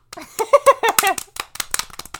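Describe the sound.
Quick, rhythmic slaps of hands on thighs mimic galloping horse hoof beats, fairly loud, following a burst of voices and laughter at the start.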